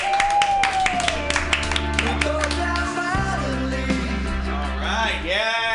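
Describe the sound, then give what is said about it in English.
An audience at the Joke Workshop comedy show claps and cheers for the next comedian, steadily throughout, mixed under loud upbeat music with a sustained bass line and a sung melody, the whole mix staying at an even level. “Clap your hands wildly for”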